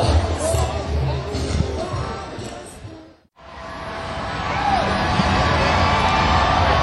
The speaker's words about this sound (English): Well, the crowd's getting anxious here. Looks like the band members might be coming on stage here in a second. And they're getting restless.